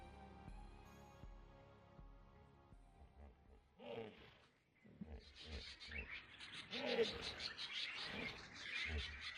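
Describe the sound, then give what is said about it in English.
Wild animals roar loudly and repeatedly, with shrill chirping calls mixed in, after a few seconds of low, steady tonal droning. “Animals roar and then are humbled by the sound of walking guards.”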